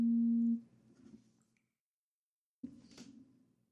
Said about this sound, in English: Oh, jeez. We got a phone call.